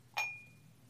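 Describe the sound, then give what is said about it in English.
A single bright clink as a small citrusy, spicy-smelling item is placed into a cup, with a clear ringing tone that fades over about half a second against a quiet low hum. “So I'm going to place it right into our cup.”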